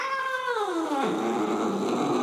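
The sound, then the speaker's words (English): A single loud, drawn-out meow from Boss the cat, its pitch sliding steadily downward into a low, raspy yowl that holds for about two seconds with no other sounds around it. “Boss called the shot with a mighty meow, which some have translated as "Protect our pumpkin!"”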